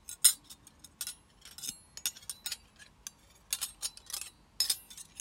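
Two forks tapping and clinking against each other in quick, irregular bursts, giving bright, thin metallic ticks with short pauses between clusters and no talking.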